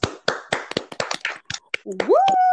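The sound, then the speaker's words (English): A short, uneven burst of hand clapping, around a dozen sharp claps over two seconds, followed by a rising vocal whoop at the end; a round of applause for a guest being introduced. “Round of applause.”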